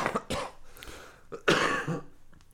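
A person coughs several times in quick, harsh bursts, with a louder, longer coughing fit near the end, sounding close and somewhat raspy with no talking.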